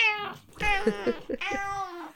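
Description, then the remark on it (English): A cat meows three times in quick succession, each call drawn out and tonal with a rising-then-falling pitch. The meows are moderately loud, with no talking around them. “how do you stop other cats peeing in the garden?”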